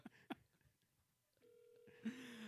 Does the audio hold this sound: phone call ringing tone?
yes